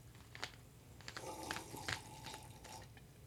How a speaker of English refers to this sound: I have a Bucky's coffee cup right now that we're pouring Coca-Cola Dreamland into. The fizzes. You can hear the fizzes. It's nice.